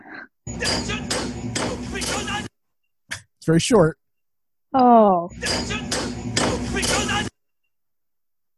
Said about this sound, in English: It's when Lev is like slamming his wrench into the instruments, and he's like, "Oh yeah, yeah." He's like, so "He's trying to make the ship go."